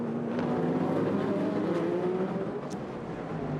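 Sports race cars drone steadily during a 2023 WeatherTech SportsCar Championship race at Long Beach, a continuous high-revving roar with shifting pitch as cars run together on the track, no voices heard.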